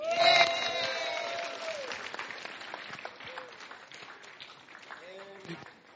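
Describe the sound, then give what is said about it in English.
An audience at a sermon breaks into dense, steady applause for Jesus, loudest at the start with whooping cheers on top, then slowly thinning out while scattered voices keep calling out over the clapping. “Would you give it up for Jesus?”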